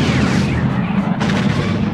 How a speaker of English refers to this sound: Use photon torpedoes. The torpedoes shot away and shattered the asteroid.